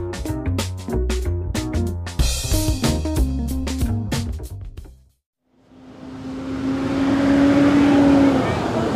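school bus pulling up

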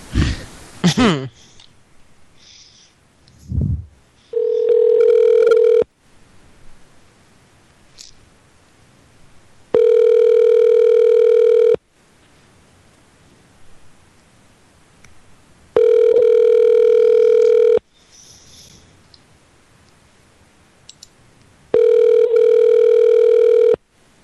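phone call ringing out

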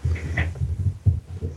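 cat

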